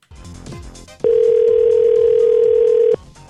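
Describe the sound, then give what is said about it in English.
A telephone dial tone from a receiver left off the hook after it missed the cradle when being hung up: a loud, steady, unbroken electronic tone holds for about two seconds after a moment of muffled clatter, then cuts off. “You didn't hang up very good, though. You missed.”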